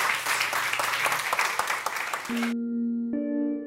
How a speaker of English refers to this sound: big round of applause now for Rick Prelinger